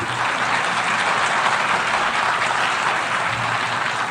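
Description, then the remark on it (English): Sustained audience applause, a dense steady wash of many hands clapping at even loudness throughout, with no voices over it. “Well, you applaud now, but at the time, many dismissed my optimism as wishful thinking.”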